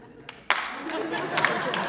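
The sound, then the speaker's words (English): A few sharp, isolated claps ring out, then a thin spread of scattered audience clapping continues at moderate loudness, sparse and unhurried, like a slow clap that never builds into full applause. “That sounds like a slow clap rather than an actual clap, but thank you very much.”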